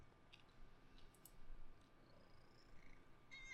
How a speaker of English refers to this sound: Will you purr for the people? Please.